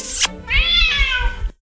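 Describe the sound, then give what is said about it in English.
A single drawn-out cat meow, rising then slowly falling in pitch, fairly loud, preceded by a brief burst of noise and ending abruptly in silence. “That's a cute kitty.”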